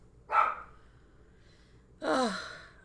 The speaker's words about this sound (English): And my dogs are having a little meltdown. Be quiet.